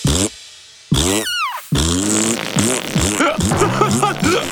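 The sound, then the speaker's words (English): A loud run of fart sounds: a couple of long blasts and a high squeaky whistle, then a rapid string of short, rubbery toots that keeps going. “He can't stop farting.”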